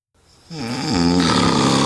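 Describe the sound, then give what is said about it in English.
A man with severe sleep apnea snores loudly in bed at night: one long, rough, rattling inhale that swells quickly and keeps droning at full strength. No one speaks. “you're snoring too loud.”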